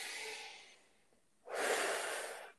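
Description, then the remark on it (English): A deep, deliberate meditative breath drawn in through the nose, a short pause, then a fuller, louder airy exhale, with no talking. “And then that third breath, merge earth, sky, and you into the sacred space of your heart.”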